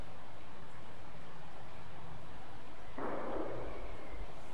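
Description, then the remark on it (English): A single sharp, gunshot-like crack, like a thrown rock striking something, breaks out of quiet outdoor ambience on a trail about three seconds in, with a brief echoing tail and no talking. “That sounded like a gunshot.”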